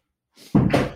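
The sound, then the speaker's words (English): A door swings and shuts with a solid thunk, preceded by a brief soft rustle of movement; a single firm closing sound with no voices. “Let me just shut the door”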